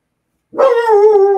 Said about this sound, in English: this dog making noise in our house